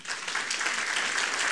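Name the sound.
audience clapping hands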